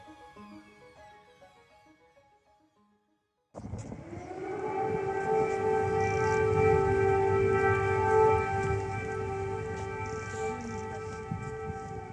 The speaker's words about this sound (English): But as I discovered, most residents now tend to ignore the frequent air raid alarms.